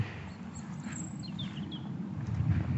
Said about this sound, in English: And I can see the woods below me that I'm keen to have a look at. I've come off the top and down to where the robins sing.